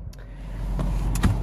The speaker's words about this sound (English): Here we are, once again, in my car.